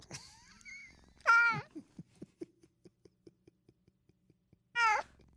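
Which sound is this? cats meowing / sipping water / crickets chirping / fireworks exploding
cats meowing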